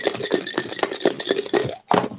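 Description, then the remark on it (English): Dice rattle continuously against a hard surface, a dense clatter of small clicks for about two seconds, then a short pause and one final burst of tumbling. “Okay, let me roll some dice here real quick.”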